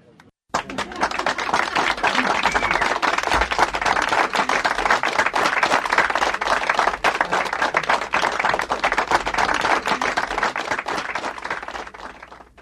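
A crowd bursts into dense, sustained applause after a brief quiet start, many hands clapping steadily and loudly for about twelve seconds before fading at the end.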